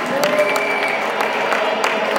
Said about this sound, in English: Will you give that hand to Jesus Christ? Give that hand to the King of all kings. If you're clapping, clap for Jesus.